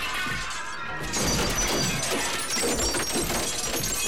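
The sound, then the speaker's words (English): A loud glass window shatters and crashes as a stuntman crashes through it, with a dense burst of breaking and debris that keeps rattling for several seconds, full, with no talking. “Oh, stuntman banged his knees on the way through that window.”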